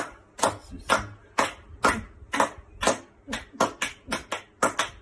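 Slow, uneven hand clapping by Prince Charles and Camilla applauding healthcare workers: about a dozen sharp claps in five seconds that drift in and out of step, some landing as ragged doubled smacks, with no voices.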